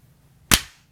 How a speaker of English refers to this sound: Did we clap? We all clapped, right? Yes, that was thrilling.